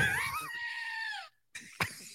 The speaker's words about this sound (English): there's like an ornament here. I didn't know it made noise. Yeah, was that a goat? It's a goat. Oh my god, yo.